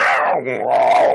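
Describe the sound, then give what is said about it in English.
A person vocally imitates the call of a giant axe-beaked bird creature led past by people on the western side of East Haven: one loud, throaty, growling cry lasting about a second, dipping lower in the middle before rising again. “And as you all start to make your way out onto the western side of East Haven, you pass by a couple people with giant birds with faces that their beaks are almost axe-like. And you just hear that.”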